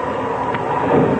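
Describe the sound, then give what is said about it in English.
An airplane rolling along the ground after touchdown: a steady, dense low roar and rumble that swells slightly toward the end, with no voices. “Hey, listen to that. Listen, we're on the ground.”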